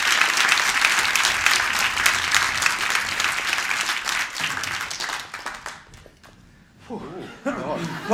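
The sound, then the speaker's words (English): Loud, dense audience applause for the dancers, many hands clapping at once, tapering off after about five seconds as people begin talking and cheering over the fading claps. “We just want to start off by saying a massive thank you and a huge round of applause to our dancers.”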